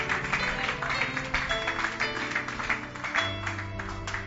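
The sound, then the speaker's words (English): A church audience claps steadily for several seconds during a sermon, a dense rattling wash of many hands, with sustained musical tones playing underneath throughout. “Somebody should clap his or her hands for Brother Peter.”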